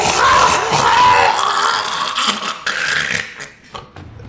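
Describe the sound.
A voice imitates a harsh, demonic shriek: loud, raspy and strained, sustained for a few seconds before tapering off into ragged breathy bursts.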